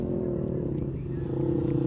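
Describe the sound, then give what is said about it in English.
A racing motorcycle, number 85 ridden by Andy Whale, roars past, a steady, loud droning rumble that holds throughout and swells slightly toward the end as the bike passes. “And then number 85 just gone by me now.”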